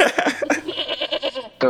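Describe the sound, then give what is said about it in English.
A goat bleat sound effect: a wavering, quavering cry that lasts over a second, loud, followed by the start of another bleat. “Y'all already know, this the brother goat, bad. Yeah, we gonna cue that sound effect.”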